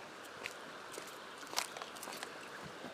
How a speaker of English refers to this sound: And I'm walking on buttercups.